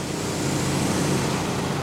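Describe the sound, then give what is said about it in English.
A debris truck's engine rumbles steadily, blended with a constant broad hiss of a worker's fire hose spraying water on the incoming truck to wet down Ground Zero debris at a nighttime barge loading site on a warm autumn night; even loudness throughout, no voices. “It's a 24/7 operation, and on this warm autumn night, streetlights illuminate a steady arc of water as a worker with a fire hose sprays an incoming truck.”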